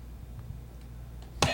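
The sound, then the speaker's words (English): A quiz buzzer suddenly blares near the end as Adam McKay buzzes in, loud and harsh, breaking a quiet stretch of low background hum with a few faint ticks. “Oh, Adam McKay buzzing in.”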